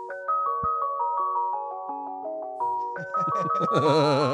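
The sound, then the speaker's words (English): An ice cream truck jingle plays from the outside of a car: a bright, tinkly electronic melody of evenly paced notes that ends in warbling, wavering tones, with no talking. “Like, for instance, the dreamy blue-eyed brother, his daughter made his car the ice cream truck when she was getting dropped off at school. So here's the ice cream truck.”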